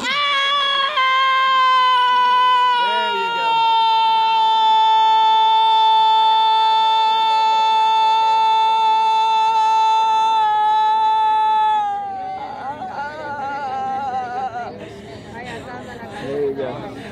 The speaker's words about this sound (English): That was a demonic scream. The length of that scream was wild.